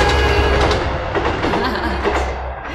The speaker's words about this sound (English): Here comes the train. Wave at the train. Wave at the train.